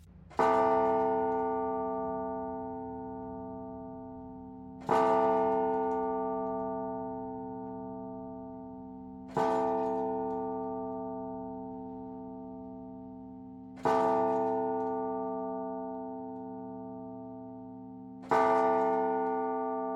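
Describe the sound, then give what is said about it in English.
A deep clock bell strikes midnight slowly and steadily, five loud chimes about five seconds apart, each tone ringing out and fading before the next. No one speaks. “and the revel went whirling on until at length there commenced the sounding of midnight upon the clock.”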